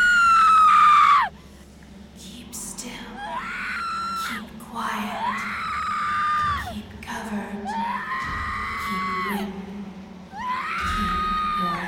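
A woman screams over and over, a series of long, shrill, wavering cries separated by brief gasping pauses, loud and close against a low rumbling background.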